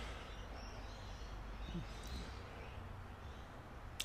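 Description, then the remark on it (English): Steady low traffic rumble fills the background, heard from a portable disposable hot tub, with a few faint, brief bird chirps rising above it and a short click near the end. “As I listen to traffic here in the portable disposable hot tub, as I listen to the traffic and the birds”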